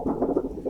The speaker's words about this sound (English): A little unrelated, but I just want to point out that the Cricut mat makes a rain sound when you wiggle it.